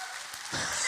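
An audience breaks into applause during a sermon about Christ conquering the tomb. It is a dense, steady patter of many hands clapping that swells louder about halfway through and holds there. No one speaks over it.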